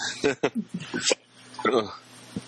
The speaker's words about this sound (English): So I've been drinking since we started. I got drinking hiccups.